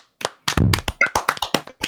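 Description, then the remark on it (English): A burst of hand clapping marking the end of a show, about a dozen sharp, loud claps in a quick uneven rhythm, some overlapping, with no voices. “And dudes, with that's a show. Let's clap it out.”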